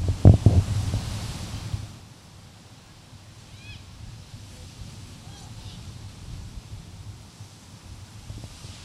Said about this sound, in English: Okay, so that wasn't birds, that was some kid yelling, but still, just something about the noise here is just so peaceful.